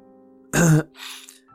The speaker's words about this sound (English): Me too, man. I said, behind a cough to clear the chokehold inside my throat.